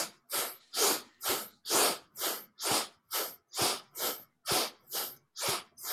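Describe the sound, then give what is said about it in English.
Quick, shallow breaths drawn in and out through the nose as part of a breathing exercise, about a dozen evenly spaced sniffing puffs in a steady rhythm, fairly loud, with no talking. “This is a shallow breathing. You can just do this through the nose.”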